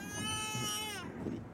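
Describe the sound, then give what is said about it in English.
An infant in a car seat in a car cries in one long, high, strained wail that slides downward in pitch, then trails off into lower, choppy fussing sounds. “He's upset.”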